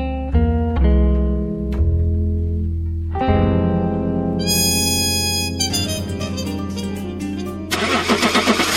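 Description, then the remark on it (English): The engine of a shiny new sports car cranks over and catches, settling into a deep rumbling idle before revving up sharply and building to a louder, throaty roar at the end. “I hardly recognise you in this shiny new sports car.”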